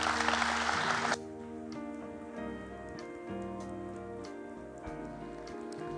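A church audience claps in a dense, loud burst for about a second as a pastor comes forward, then the clapping cuts off and sustained organ-like keyboard chords continue alone.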